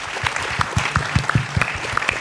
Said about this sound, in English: Before we do close, I want to thank the Anderson School of Management at UCLA for co-presenting tonight. A big round of applause for them, please.